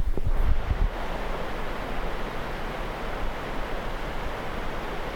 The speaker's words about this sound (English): Can you point the micro down there and see if you can hear the sound of the river flowing?